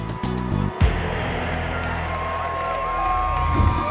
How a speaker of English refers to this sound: The mood was jubilant as teeming crowds packed in Edinburgh's lawn market.